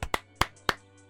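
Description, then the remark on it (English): Three sharp hand claps, a round of applause for NBA player Carmelo Anthony as he announces his retirement, land in a steady, even rhythm, crisp and fairly loud, with no voices and only a faint low hum underneath. “Can we get a round of applause for Carmelo Anthony?”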